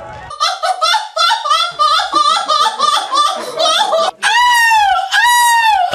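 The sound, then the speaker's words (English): Participants in a seagull-imitation championship, judged on sounding and moving like the seabird, imitate seagull calls: a loud run of rapid, yelping staccato cries for about four seconds, then two long, high, wailing calls that rise and fall in pitch. “Beachgoers Championship participants were judged by their ability to sound and move like the large seabird.”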